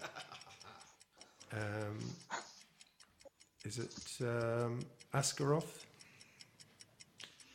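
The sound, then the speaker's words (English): A countdown timer for a quiz question ticks steadily at a brisk, even pace throughout, its sharp clicks clear while a man's voice speaks briefly over it. “Now I'm going to set the clock on that one.”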